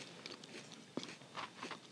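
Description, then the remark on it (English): Crisp crunching of a crunchy Nutter Butter peanut butter cookie being chewed, with a few sharp bites among irregular mouth sounds, fairly quiet and alone with no talking. “I hope you guys feel some like emotional relief, decompression as I chew on this.”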